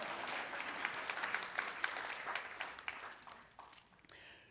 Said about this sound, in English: Yeah, we can all clap. That's good. Fine.